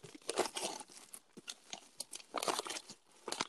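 Crackly rustling and tearing of paper wrapping as a parcel is pulled open, with irregular bursts of crinkling and ripping and no talking.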